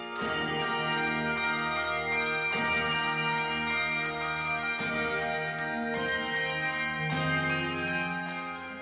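A handbell ensemble plays a full, ringing passage, with chords struck every second or so and their bright tones sustaining and overlapping at a steady, fairly loud level. No one speaks.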